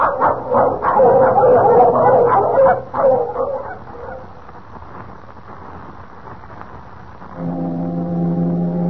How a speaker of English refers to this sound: That foghorn. Last time I heard it, Kent, was over 3 years ago.